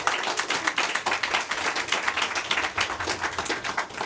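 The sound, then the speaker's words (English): An audience applauds to welcome a panel moderator, the CEO of Starbase Indie, many hands clapping in a dense, crackling wash that holds steady and fairly loud for about four seconds, with no voices on top. “Please give Lisa a round of applause.”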